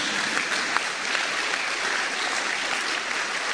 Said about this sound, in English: Clap for Joseph. Clap for Joseph. Palmas para José. Clap for Joseph. Palmas para José.